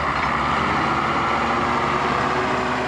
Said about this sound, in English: A road grader repairs a soy highway washed out by torrential rains. Brazil is rapidly paving a path through the Cerrado frontier to its future.